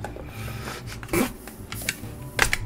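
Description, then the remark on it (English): Turquoise dice clatter across a tabletop in a few quick, bright rattling bursts, the last one loudest, with no voices over them; the dice are rolled for a perception check in a tabletop game. “First roll. First. I'm using my wife's turquoise dice tonight because my other ones sucked.”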